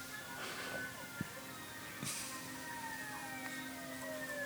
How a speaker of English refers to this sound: It's San Francisco. They could be going anywhere. True. Not a slam on San Francisco, but just this movie alone. Just, oh, we have a siren sound effect. Let's use it.